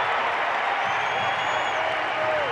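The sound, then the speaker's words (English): A basketball arena crowd, on its feet as the Jazz lead 51-40, roars and applauds in a steady, dense wash of cheering, loud and unbroken for the whole stretch, with a thin whistle-like tone gliding through it. “Crowd to their feet.”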